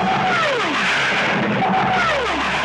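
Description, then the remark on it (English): A cartoon library wubba-wubba machine effect loops loudly the whole time characters are inside a machine, its warbling tone sweeping downward twice in a steady repeating cycle over a constant whooshing, engine-like roar. “It's like the cartoon wubba wubba wubba sound. And it's just on loop the whole time they're in this machine.”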